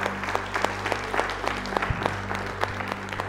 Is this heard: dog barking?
no